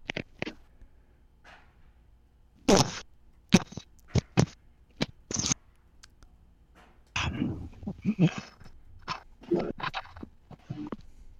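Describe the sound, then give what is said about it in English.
A voice imitates wet slurping right up against the microphone: irregular, sloppy smacking bursts, some sharp and loud, others a softer continuous lapping, with brief quiet gaps between. “He's sitting back there at 2 in the morning, slurping in my fucking ear”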